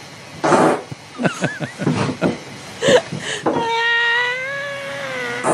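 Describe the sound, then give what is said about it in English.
A series of short, sputtering recorded fart sounds from girls, then a long, drawn-out squeaky one with a steady whining pitch, fairly loud. “These are girl farts.”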